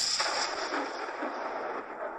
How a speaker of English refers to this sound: They got closer and tried to get the attention of anyone on board with a cannon blast.